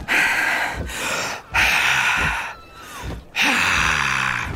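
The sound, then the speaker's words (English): A voice imitates a dragon trying to breathe fire: forceful huffing and snorting, several loud, breathy blasts in a row with short pauses between, strained, as if trying hard to puff something out. “Look, she's trying as hard as she can, but there's definitely no fire coming out of her nose or mouth.”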